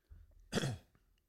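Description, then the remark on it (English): A single short cough or throat-clearing burst, harsh and breathy, rising out of quiet and fading within about a quarter second, with no talking over it. “What's that cough? Just clearing.”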